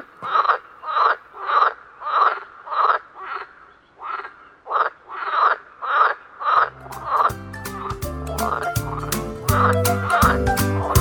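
many frogs croaking

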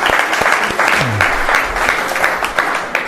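audience round of applause

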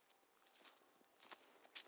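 footsteps walking

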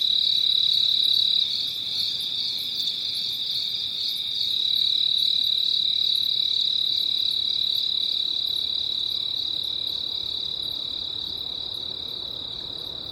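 crickets chirping at night

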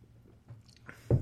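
sipping a drink

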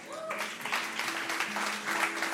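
audience clapping

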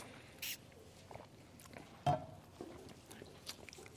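sipping water

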